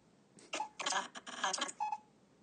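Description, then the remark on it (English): A quick run of short electronic beeps from a phone keypad as numbers are pressed to call voicemail and get messages, several tones in uneven succession over a light background hiss. “So you're calling your voicemail to get the messages?”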